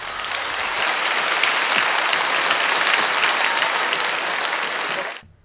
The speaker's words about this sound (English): Your applause, please.